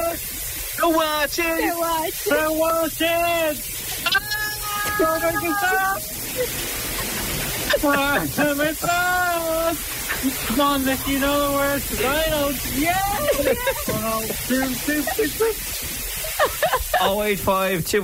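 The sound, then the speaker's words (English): Steady hiss of shower water running throughout, fairly loud, with a voice singing or humming melodically over the spray in bursts. “What song are we singing in the shower, okay?”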